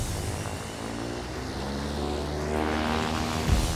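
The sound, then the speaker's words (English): A small private propeller plane's engine drones steadily and fairly loud throughout at a landing strip, its pitch shifting slightly as it runs, with no voices present. “Four prisoners were removed from their cells, strip-searched, restrained, and loaded onto a private plane docked at a nearby landing strip.”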